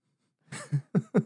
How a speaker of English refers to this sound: my dog is sneezing.